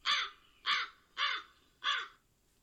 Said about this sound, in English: Crows.